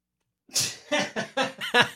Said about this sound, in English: Sneezed again.